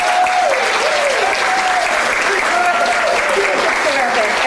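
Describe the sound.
Steady, dense applause from a crowd, a loud continuous wash of clapping that holds for several seconds, with faint voices and a few brief tonal sounds mixed in underneath.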